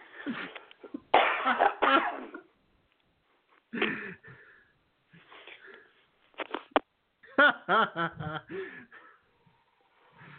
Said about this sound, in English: … is on a little cough break here